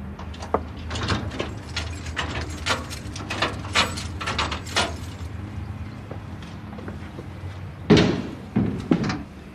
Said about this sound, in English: Now we're approaching the book house. The book house is where the memorial books are kept. I just open the door now. If I can find the right key.